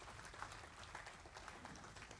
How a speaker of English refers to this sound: A clap offering for the Lord.